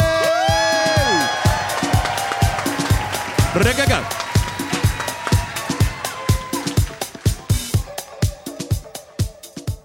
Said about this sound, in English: The youngest city council member I think ever elected. Please give a huge round of applause to Ossé.